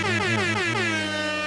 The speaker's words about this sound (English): Air horn.